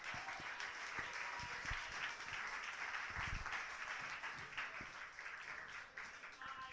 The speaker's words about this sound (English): If you like that poem, please clap for the poet now.